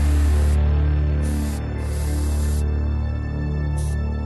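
An aerosol spray paint can hisses in four bright bursts, some short and one longer, fairly loud, over a steady low electrical hum with no talking.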